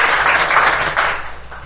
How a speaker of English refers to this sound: Thank you. Give him a round of applause for the first answer.